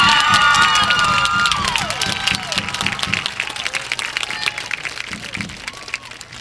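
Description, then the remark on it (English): A crowd at the Woodland High School homecoming applauds and cheers for the homecoming queen and court, with dense steady clapping and high, sliding whoops and shouts rising over it. The noise stays loud throughout, thinning slightly toward the end. “Let's give all of our homecoming court one more round of applause, and we'd like to thank all of our alumni teachers who came to help with their students today.”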